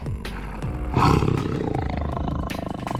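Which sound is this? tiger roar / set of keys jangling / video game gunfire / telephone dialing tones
tiger roar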